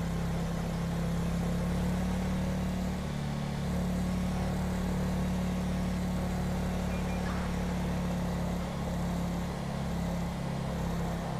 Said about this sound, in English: It's a really nice Los Santos police car though.